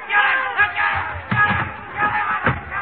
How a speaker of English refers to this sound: The crowd. They're after me.